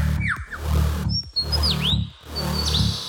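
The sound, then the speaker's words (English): A mimicking bird that can imitate the calls of at least 20 species runs through three quick bursts of varied chirps, swooping whistles and trills, loud, with a rich, buzzy lower tone sounding beneath each phrase. “can imitate the calls of at least 20 different species.”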